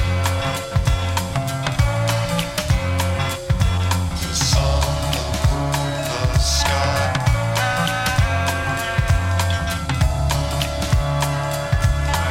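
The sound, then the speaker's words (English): A loud, dense, epic music track over seven minutes long plays continuously with a steady driving beat, layered sustained tones and bright cymbal-like accents, with no one talking over it. “So as you can hear, this is quite an epic tune.”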